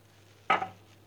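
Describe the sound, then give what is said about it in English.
A single brief clatter of dishes knocking together in a dish pan, with a short metallic ring that fades quickly, over a steady low hum and no voices. “It sounds like the microphone is pointing directly into the dish pan.”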